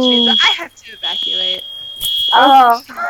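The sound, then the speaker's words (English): The speaker's fire alarm shrills with a steady, piercing high tone that sounds almost continuously, while people talk over it in the foreground; it forces an evacuation. “And that would be my fire alarm.”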